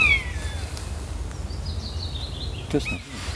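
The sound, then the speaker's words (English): Thin, high mewing calls of buzzards flying overhead in the countryside drift down, a falling cry at the start and a longer wavering one after, over a steady low rumble of wind. “That sounds like buzzards, doesn't it?”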